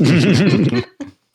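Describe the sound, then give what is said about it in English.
A loud slurping sip of hot chai lasting under a second, with a wavering tone, followed by a brief softer gulp or clink. “And I'm sipping chai.”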